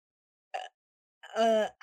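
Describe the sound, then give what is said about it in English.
A person imitates a raven as a sound effect, with a short clipped vocal burst, then a longer, harsh, nasal caw, and a third cry begins just as it ends. “So I will ask you then to give us a sound effect for a Raven, because we didn't do that for the Ravens game.”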